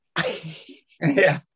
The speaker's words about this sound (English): Well, I did just, white, you know, I did just my, sneeze.